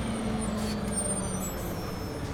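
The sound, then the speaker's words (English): A large Greyhound bus rumbles as its brakes let out a thin, high squeal over the steady engine drone, holding for a couple of seconds while it comes to a stop. “Kit was pulled from his thoughts as the Greyhound squealed to its final stop.”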